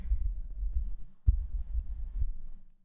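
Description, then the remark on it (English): A diesel engine runaway on a VE pump truck, recorded with the microphone held close, rumbling in a deep, steady low-pitched drone with a throbbing pulse and one sharp knock partway through, fading out at the end. No one speaks. “Fast, at least on a VE pump truck, the runaway happens.”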